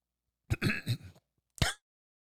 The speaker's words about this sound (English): Sorry for the brief delay there. Had a little bit of a cough.